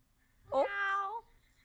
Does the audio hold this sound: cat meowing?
yes